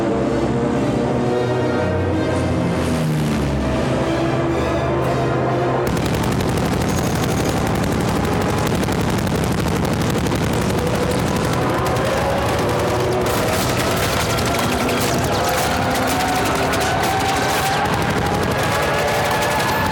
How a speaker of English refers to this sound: And it's such a wicked shot of Statham with the shirt rippling in with the air. And he's firing the weapon down that dock of the people.